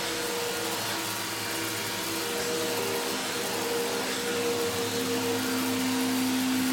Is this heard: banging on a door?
no